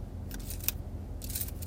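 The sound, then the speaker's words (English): Plastic zip ties that were cut off weeks earlier rustle and click as they're handled, with a few short crinkly bursts and one sharp tick against a low background hum; no one speaks. “And for anyone wondering, I have the zip ties that she literally cut off many, like, weeks ago.”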